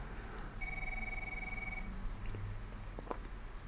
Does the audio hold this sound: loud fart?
no